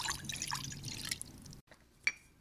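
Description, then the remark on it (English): Scratchy rustling of a spice blend including oregano and sea salt being mixed in a bowl for about a second and a half, then a short pause and one sharp clink against the bowl. “So I'm going to go ahead and mix those things together.”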